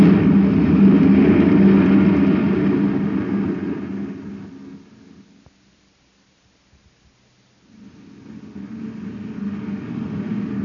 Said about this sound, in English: that guy drives like a maniac. Did you see him whiz past us? It's a maintenance truck.